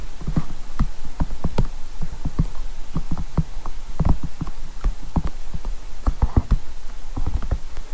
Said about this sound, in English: that's almost using the capsicum as the sound effect on Monty Python the Holy Grail to gallop horses with